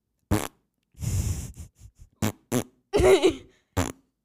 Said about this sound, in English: What does this button do? It's going to have a fart noise. Ready?